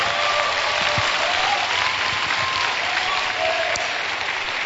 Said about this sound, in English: Hallelujah. Clap for the Lord one more time.